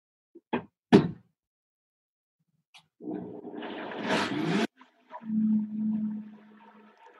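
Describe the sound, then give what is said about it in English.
A high-speed Vitamix blender blending cooked potatoes: two sharp clacks, then a loud, rough whirring roar for under two seconds that stops abruptly, followed by a steadier, lower-pitched motor hum. No one speaks. “I'm like watching you blend with a Vitamix that I have not yet pulled the trigger on.”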